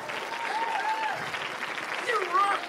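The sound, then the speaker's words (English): A live audience claps steadily in a dense, continuous wash of applause, with scattered cheers and whoops rising above it, loud and sustained throughout. “Can you hear that crowd?”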